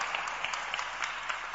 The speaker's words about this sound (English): I want you to clap for the word of God before I continue.